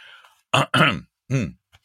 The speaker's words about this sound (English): I have to clear my throat for this one. There we go.